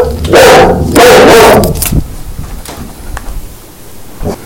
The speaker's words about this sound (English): My dog is barking.